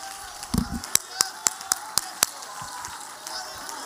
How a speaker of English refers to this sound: Would you clap your hands? And would you give praise unto the Lord?